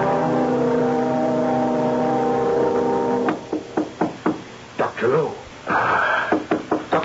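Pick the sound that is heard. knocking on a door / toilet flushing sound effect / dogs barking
knocking on a door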